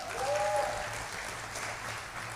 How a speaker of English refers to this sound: So I want you to give the worship team a round of applause this morning.